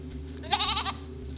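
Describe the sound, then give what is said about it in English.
A single wavering bleat from agitated goats, loud, rising out of a steady low hum of background noise and fading after about half a second. “you can hear the goats. They're really agitated.”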